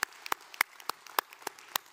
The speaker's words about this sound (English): Now, another hand clap of praise. Let's give praise to our Heavenly Father. He deserves it, doesn't he? Praise God.